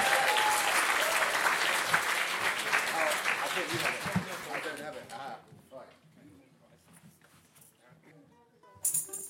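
A crowd claps loudly in a dense, sustained burst for about five seconds, then the applause thins out into scattered claps and fades, with a brief noisy burst at the very end.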